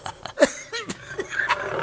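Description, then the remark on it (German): A dog pants in quick bursts, mixed with short whiny, rasping vocal sounds and low grumbling, with no one talking. “der Fremde mit Hund.”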